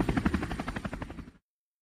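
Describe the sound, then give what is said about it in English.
A helicopter's rotor chops in fast, steady thumps, loud, with a broad engine roar underneath before cutting off abruptly after a little over a second. “I took the helicopter.”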